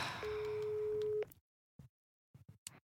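A telephone busy signal as the person being called rejects the call: one steady mid-pitched tone holds for about a second over a hissy, crackly line, then cuts off abruptly, followed by a few short, faint bursts of sound.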